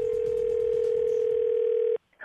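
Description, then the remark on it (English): A steady, loud telephone dial tone hums unbroken for about two seconds, then cuts off abruptly into near silence, with a faint click or rustle just after, as a prank call is placed to a home for the Froggy phone tap segment. “So I try and call him as a bookie to collect the money that he owes”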